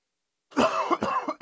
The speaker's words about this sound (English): Excuse me, got me coughing. It was choking me.